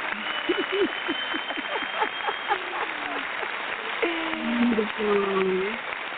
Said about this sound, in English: Got to give you some applause, sister, for joining with me tonight. I appreciate you so much.